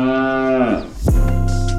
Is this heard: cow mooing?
yes